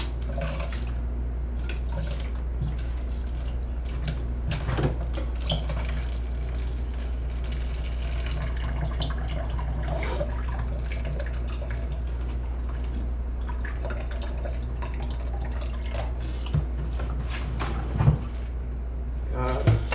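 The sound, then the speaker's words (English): Clean drinking water pours steadily into a cup, a continuous splashing trickle over a low background hum, with a few small clinks and bumps near the end. “I'm pouring clean water in my cup.”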